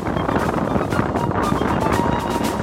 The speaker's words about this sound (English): The wind was overpowering.